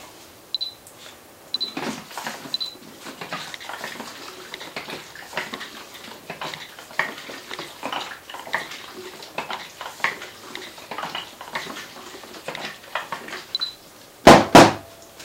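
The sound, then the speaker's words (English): A film developing tank being agitated, with soft irregular plastic clicks, rattles and faint sloshing throughout, ending in a sharp, louder clatter. No one speaks. “I've got another agitation coming up.”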